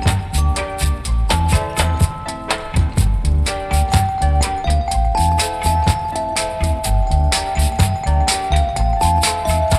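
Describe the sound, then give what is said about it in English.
Bright, bell-like glockenspiel tones ring out in a steady melody over a loud, thumping dance beat with regular percussive hits, continuing throughout with no voices. “Simple translation, bells playing, Glockenspiel.”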